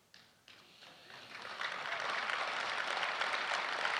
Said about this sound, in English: You can clap for yourself. Like, some of you haven't had a round of applause in a while. So that's good.